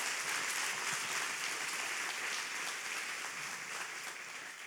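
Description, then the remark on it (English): An audience at a bilingual Spanish and English church meeting claps steadily in a dense, sustained round of applause to God, loud and even throughout with no voices standing out, tapering only slightly toward the end. “Let's give God a great round of applause.”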